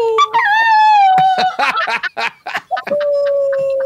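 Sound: dog whimpering and howling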